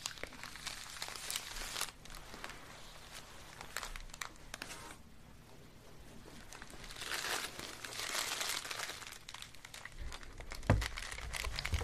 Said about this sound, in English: neatly, tightly packed, and this tissue paper is going to protect your wonderful jar of coffee beans.